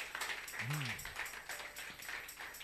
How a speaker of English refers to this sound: He's a good man. Let's clap for him, for his heart.